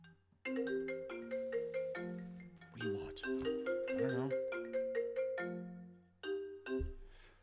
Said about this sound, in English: And that's my phone.